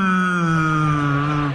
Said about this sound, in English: Whales always kind of sound depressed, don't they?